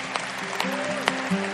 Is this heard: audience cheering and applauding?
yes